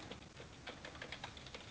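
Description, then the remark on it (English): Typing on a computer keyboard: quick, irregular clicks of keys being pressed, fairly soft, with no talking over them. “What are you typing?”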